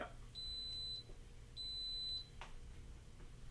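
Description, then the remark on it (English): Two steady, high-pitched electronic beeps from a pressure cooker running its initial test before it begins heating, each lasting about half a second with a short gap between, over a low background hum. “After 10 seconds, the cooker will beep 3 times and begin heating.”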